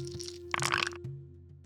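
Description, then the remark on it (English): Dice roll and clatter across a table in a quick burst of sharp, bright clicks lasting under half a second, then fade to a faint steady hum. “I just rolled a 2.”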